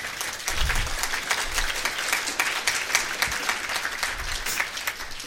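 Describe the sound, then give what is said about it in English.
A room full of people applauds a man from Prairie Harvest Church who changed his church service to a prayer vigil; dense overlapping claps form a continuous wash of sound that holds at a fairly loud level throughout, with no voices standing out. “And, I mean, we have to give him a hand of applause for taking the onus of doing this.”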